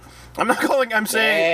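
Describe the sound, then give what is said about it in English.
A person imitates a sheep with a wavering, nasal bleat that stretches into a sustained, buzzy 'baa', voiced fairly loud, with no other sounds around it. “Oh, sheep. I thought you said cheap.”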